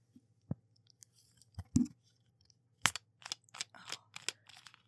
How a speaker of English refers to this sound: It's not fizzy because I already opened it. That wasn't the first one, but... You know, you heard the screw top. That's a well-loved do right there. It's already been opened.